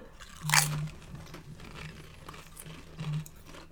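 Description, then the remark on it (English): A sharp, bright crunch as a lightly seasoned potato chip is bitten, followed by softer, irregular chewing crunches and one more louder crackle near the end. No one speaks. “They smell like normal potato chips.”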